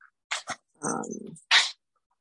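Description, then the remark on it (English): A dog jumps up on a person: a few quick scuffling bursts and rustles, then a breathy huff, fairly quiet with short pauses between them and no talking. “Brother's dog is like jumping on me.”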